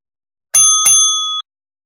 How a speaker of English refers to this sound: Ah, son of a bitch. Who did the bell? It wasn't me. Fuck my eardrums.